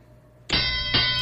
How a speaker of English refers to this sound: All right, I think we can hit that bell,